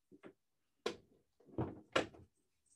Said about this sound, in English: my cat's scratching at the door here, so I'm going to take this opportunity to let him in too. Come on in, cat. Hello.